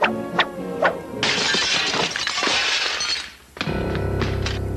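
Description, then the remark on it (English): A few sharp knocks, then a picture frame of Sarah Madre, hit by a soccer ball thrown by Budnick, crashes to the floor and its glass shatters in a loud, sustained burst of breaking shards, followed by a lower ringing tail. No one speaks. “But okay, so Budnick throws the soccer ball, which hits the pitcher of Sarah Madre, which shatters to the floor.”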